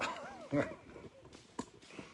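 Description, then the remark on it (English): A dog that has caught a rabbit whimpers with a few rising, wavering whines, then gives several short, sharp barks spaced out over a couple of seconds, moderately loud. “Even a three-legged dog can catch a rabbit.”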